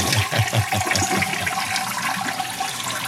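A toilet flush sound effect for a 'Flush It or Flip It' segment: a loud rushing swirl of water with gurgling pulses at the start that settles into a steady hiss of draining and refilling.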